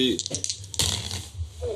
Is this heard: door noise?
no